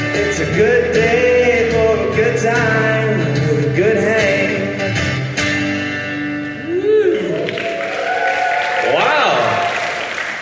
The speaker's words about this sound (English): Hey, there's clapping. There's so many things happening. There was even like a pre-recording announcement.